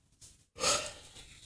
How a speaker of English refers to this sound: That yawn you just did, that is, it just drained the fuck out of me. It just, yeah.